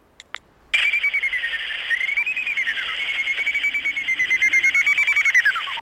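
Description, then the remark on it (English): Greater horseshoe bat echolocation calls, played from a phone, rendered as a loud, rapidly pulsing whistle, holding a steady high pitch that wavers slightly, preceded by two brief clicks, with no talking. “That was a greater horseshoe. It's quite different, isn't it? It's got much more of a whistle to it.”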